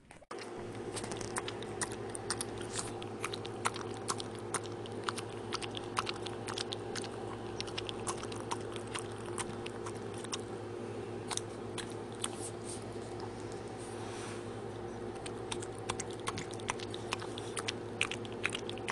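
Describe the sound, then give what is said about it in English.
A small dog chewing steadily, with repeated sharp crunching and clicking bites over a constant low hum, no talking throughout. “little dog ASMR for you.”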